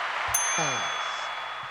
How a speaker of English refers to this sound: Turn the notification bell on. Bing!